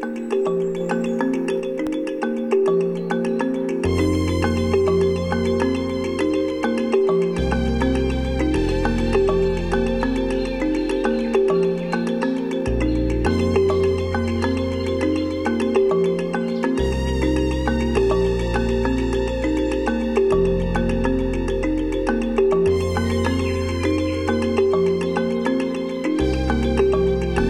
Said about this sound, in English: So, again, another strange one. I mean, you can hear the birds chirping in the background, and... but it's fucking cool. It's fucking cool.